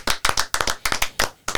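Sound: hand clapping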